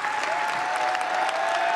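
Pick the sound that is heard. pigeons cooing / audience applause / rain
audience applause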